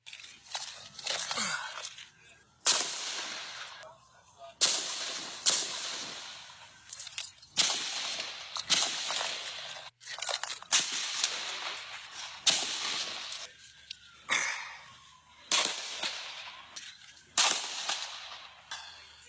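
Bursts of rapid assault rifle gunfire, fired by James T. Hodgkinson at the practice of the Republican congressional baseball team, crack out in irregular volleys, each sharp and echoing, separated by brief pauses, with no voices heard.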